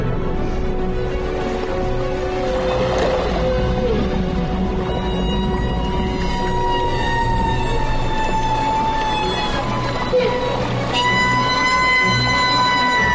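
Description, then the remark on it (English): Humpback whale song: long, tonal moans and whistles that glide and bend in pitch, with rising and falling harmonic cries over a steady low rumble of water noise, continuous throughout. “Humpback Whales. Oh, wow. This is the song they make.”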